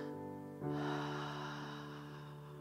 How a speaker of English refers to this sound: And I want you just to take a deep breath. And as you breathe in and breathe out, I want you to imagine Holy Spirit is breathing on the embers of your spiritual gifts, and he is fanning those into fire. In.